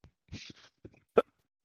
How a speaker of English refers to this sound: Big cough. That's what I'm giving you. Big cough.